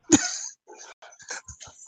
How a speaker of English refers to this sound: I have to edit out the dog barks, but they're pretty damn funny.